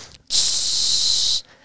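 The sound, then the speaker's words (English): A voice imitates the hiss of bear spray set off by a preschooler who got the safety off and hit the button during preschool story time: one loud, steady, high-pitched 'pssh' lasting about a second, starting abruptly and cutting off cleanly, with no talking around it. “And one of the preschoolers grabbed the bear spray and was, like, playing with it and got the safety off, and just literally 2 seconds hit the button.”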